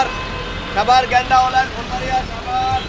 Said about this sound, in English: It's full of people. You hear rickshaws and cars. Buses are everywhere. There's a lot of traffic, a lot of fancy cars on the road as well